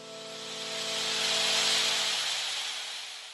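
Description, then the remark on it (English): A radio telescope recording of cosmic background noise, the echo of the Big Bang, recorded on a May morning with an antenna by radio astronomers Arno Penzias and Robert Woodrow Wilson: a steady, airy static hiss that swells to a peak midway and then eases off, with faint low humming tones beneath and no voices. “Unbeknownst to them at the time, this was the echo of the Big Bang over 13 billion years ago, and they were the first people on the face of the Earth to hear of it.”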